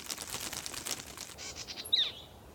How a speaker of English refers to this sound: The birds fluttered nearby, watching the boys once again.